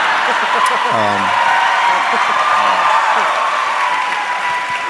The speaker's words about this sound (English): Well done. Cheap applause.